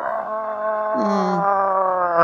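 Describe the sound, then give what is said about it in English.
A voice imitates a Tyrannosaurus roar: one loud, sustained, howling cry lasting about two seconds, with its pitch dipping briefly partway through before it holds steady. “It goes up and makes a huge roar.”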